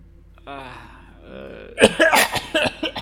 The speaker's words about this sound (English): What? Sorry, I was coughing up blood.